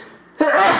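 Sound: second sneeze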